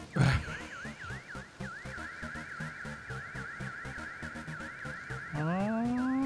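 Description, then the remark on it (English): An alarm wails in a yard after a van smashes through the gate, rapid repeating up-and-down sweeps, loud and steady, over a low rhythmic rumble, then shifts to a rising tone near the end. No one speaks. “An alarm goes off.”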